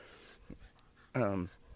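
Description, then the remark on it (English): A dog being walked pants with a short breathy huff, then lets out one loud whimpering whine lasting about a third of a second, with quiet outdoor background between. “So I'm doing push-ups right now while walking my dog.”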